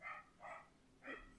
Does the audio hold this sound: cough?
no